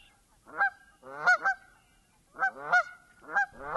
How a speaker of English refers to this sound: The Canada goose really needs no introduction. It's a giant bird with a black neck and a white chin strap. Its call is the two-syllable honk.